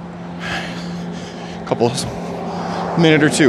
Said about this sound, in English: There's a weird amount of traffic all of a sudden in the burbs.